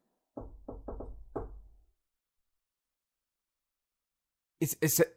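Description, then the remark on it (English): Four quick, solid knocks on a door in an uneven rhythm, fairly loud with a dull thud. Silence follows, then a voice briefly speaks. “Is that someone at the door?”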